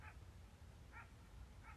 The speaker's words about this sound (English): That might actually just be someone's dog.